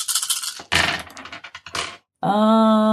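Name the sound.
dice being rolled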